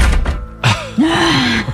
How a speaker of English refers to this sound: Here's the first one. That door was just closed.